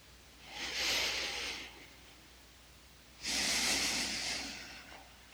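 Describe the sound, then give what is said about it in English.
Two long, deep full body breaths, done as a breathing exercise: a drawn-out airy inhale followed after a pause by another slow, hissing breath, fairly loud with no talking. “And for coming into the body, we're going to perform 12 full body breathing.”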